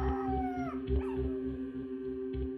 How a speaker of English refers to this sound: the metal door of the garage swung open to reveal a dense layer of acrid smoke that hung around knee height, as well as the mournful howls of a dog alone and mourning its master.